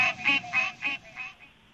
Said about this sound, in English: That was green tree frogs. It was a soloist, if you will, in the foreground, a soloist green tree frog. But in the background, you could hear the whole chorus.